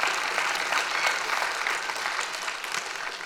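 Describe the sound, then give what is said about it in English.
An audience gives God a hand of praise, breaking into steady, sustained applause, a dense wash of many hands clapping at fairly even loudness that tapers slightly toward the end, with no voices standing out. “It's making me laugh because some of you are going, Clap for God.”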